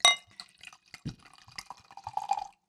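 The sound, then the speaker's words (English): A glass clinks, then liquid is poured into it, gurgling and splashing, the pour's pitch rising as the glass fills before it stops. No one speaks. “I'm going to pour it.”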